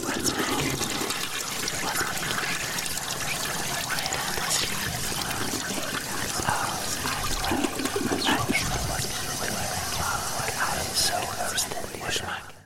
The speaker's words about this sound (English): As the toilet flushed and the water sloshed and gurgled, there was the sound of something else. The sound of voices. Voices murmuring and whispering.